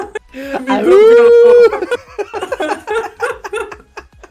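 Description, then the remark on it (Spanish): A pet dog lets out one drawn-out howl that rises and holds steady for about a second, followed by a quick run of choppy, laugh-like vocal bursts, fairly loud. “Dice, yo pensaba que era un lobo. Sí, claro. Tengo mascota.”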